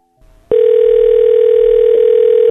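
A loud, steady telephone ringback tone sounds once for about two seconds as a call is placed to a cell phone, with only a faint rustle just before it and no voices.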